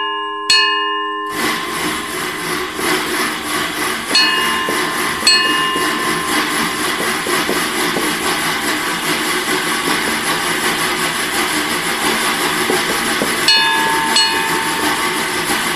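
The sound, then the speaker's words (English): A nearly 100-year-old mechanical sound-effect device mimics a train: a brief whistle-like tone opens, then a steady, loud rushing chug rolls on continuously without any voices. “But the train sounds, I am just like, you close your eyes and it sounds like a train.”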